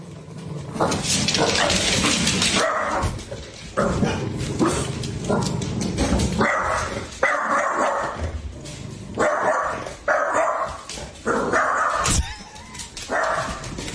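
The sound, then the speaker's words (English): A female dog barks at a watermelon repeatedly in short, loud bursts at an irregular rhythm, with some voices murmuring in the background. “By the way, that's her best big girl, tough bark.”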